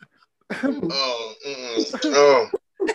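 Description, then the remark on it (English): A voice imitates a haughty, affected, stuck-up cough, a drawn-out, voiced throat-clearing sound lasting a couple of seconds, fairly loud, followed by a brief breath. “That bougie, stuck up, I'm better than you fucking cough.”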